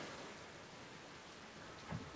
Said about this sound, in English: Why is it raining? If the water falls from the sky.